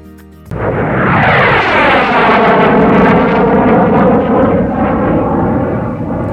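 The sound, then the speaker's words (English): A jet fighter roars loudly overhead, its thunderous engine noise bursting in suddenly and sweeping down in pitch as it passes, sustained for several seconds. “Sorry about that intro with that jet fighter, but that's the topic of our discussion today”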